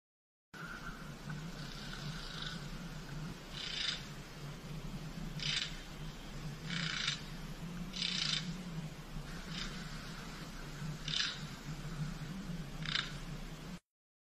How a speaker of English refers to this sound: That sounds just like mammal echolocation from whales and dolphins. In Lake Tahoe. Interesting. I wonder what that means. Like, obviously, there's a mammal down there, or mammals.